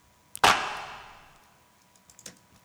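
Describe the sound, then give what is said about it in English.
A single sharp hand clap by real people, recorded in a studio and played from a sampler, rings out with a long, smooth reverb tail fading over about a second, followed by a couple of faint, softer claps near the end. “Those are actual people clapping.”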